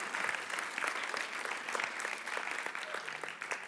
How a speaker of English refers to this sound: Can I have a round of applause, please, for God, Jesus, and John the Zealot? You may go and sit down.